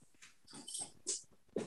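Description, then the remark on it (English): A dog makes snuffly grunting noises in a few short bursts, with a louder snort near the end; the huffs sound almost piglike and no one speaks. “Oh, that's a sweet dog.”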